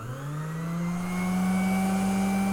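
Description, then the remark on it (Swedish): A kitchen machine motor, fitted with a meat grinder attachment, whirs steadily, its hum rising in pitch as it spins up in the first second and then holding a constant, loud tone with a buzzing, slightly whiny edge, with no voices. “Det låter ju lite som en blandning mellan hårfön och en elvisp.”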